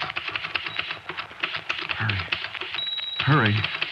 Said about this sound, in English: And the typewriter clacked away.